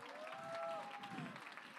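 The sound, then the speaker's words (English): An audience claps in a steady, fairly subdued patter, with a held tone and faint crowd murmur running underneath. “Notice the clapping wasn't as loud in this one, because there's some of us don't have the real Holy Ghost in here.”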